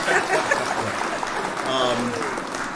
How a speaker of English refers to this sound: All right. Hit the clap, everybody.